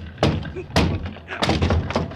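A locked apartment door is kicked in, in the radio drama Broadway's My Beat, with three heavy, booming thuds about half a second apart, each blow followed by a rattling crash of wood giving way.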